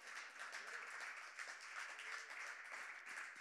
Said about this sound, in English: It's just called …. It's called, yeah, you can clap.